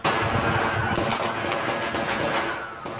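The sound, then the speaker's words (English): Rapid gunfire cracks out in a quick, uneven series of sharp shots over a loud, chaotic crowd din at a protest in Dallas, the bursts cutting through the noise as people run for cover. “The demonstrations, though, suddenly rocked by gunfire, people running for cover.”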